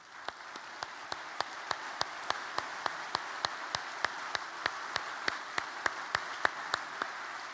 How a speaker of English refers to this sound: I'd like to invite all our veterans who are here, this being the weekend for that. It was Friday, to please stand up, all our veterans. Can we give a round of applause for our veterans?